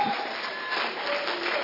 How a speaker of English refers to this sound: Is that for Jesus or are you clapping for Jesus? Glory to God. Hallelujah.